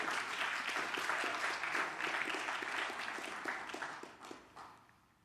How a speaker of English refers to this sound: You ought to give God a hand clap for that one. Come on.